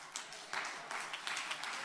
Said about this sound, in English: Hey, I heard them hand claps, but I didn't feel that. I didn't feel that vibration like it ought to be.